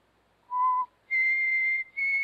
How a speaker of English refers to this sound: What, nothing, not a thing, Dan'l. I just whistled.